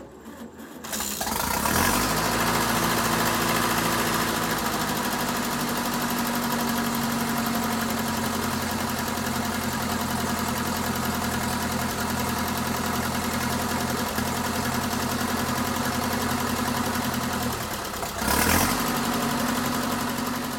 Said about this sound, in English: tell me a little bit about when you're starting up the tractor. It's not as if you just go out there and crank it over and away you go. There's a little bit of preparation you need to do.